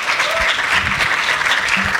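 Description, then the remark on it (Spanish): Steady, dense applause from an audience at Icono welcoming the Compassion International team, a continuous crackle of many hands clapping at a loud, even level, with faint voices murmuring underneath. “Pues Icono, vamos a charlar ahora con la gente del equipo de Compassion International, así que si queréis pasar, chicos, le damos un aplauso, porfa.”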